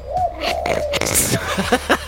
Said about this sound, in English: I just want to calm it down with the sound of doves cooing. That's an owl.